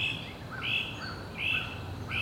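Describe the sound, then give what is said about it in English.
A great crested flycatcher gives a raucous, rasping call three times in steady succession, fairly clear against a low, steady outdoor background hum, with no one speaking. “Pretty soon, we hear the raucous rasp of a great crested flycatcher.”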